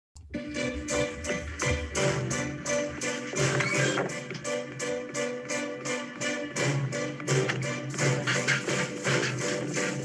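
A lively stage-musical song from Annie plays loud and full, driven by sharp rhythmic tapping and stomping beats that repeat steadily throughout the whole stretch.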